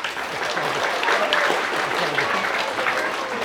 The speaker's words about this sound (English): So big clap for them.